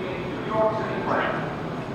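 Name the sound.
subway train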